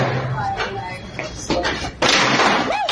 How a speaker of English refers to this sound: Now, the other customer's just throwing chairs at the Pokemon man now.